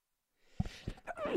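A breathy intake of air builds into a sharp, sudden sneeze, followed by a brief voiced sound that slides in pitch. The sneeze is fairly loud and stands alone.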